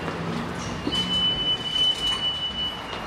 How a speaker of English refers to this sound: Ooh, train's here. Just missed it. It's 8:03. The train is rolling in.